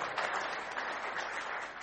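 An audience claps together in a steady, dense wash of applause that holds an even level throughout, with no voices heard over it.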